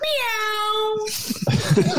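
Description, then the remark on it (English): A child imitates a cat's meow with one long, slightly falling, nasal cry lasting about a second. It is followed by some muffled talking and background noise. “Meow. That seemed negative at the end.”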